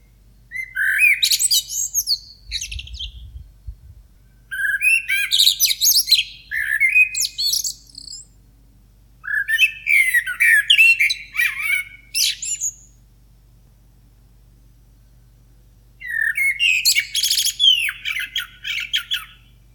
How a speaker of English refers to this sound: We get an influx of visiting birds. The cuckoo, of course, arrives in April. Birds are preparing for the nesting season and we anticipate the dawn chorus and evening birdsong.